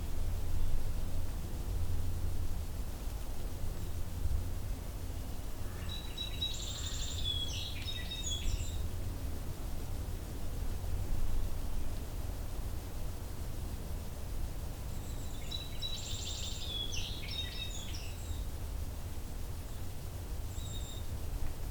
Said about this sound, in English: Here's a song sparrow.